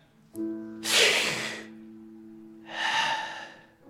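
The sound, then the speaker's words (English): A person imitates the slow, raspy breathing of a dying man in a hospital: two long, drawn-out breaths, fairly loud, separated by a lengthy pause, over a faint steady low hum. “When they're breathing and you wonder if that's going to be the last breath.”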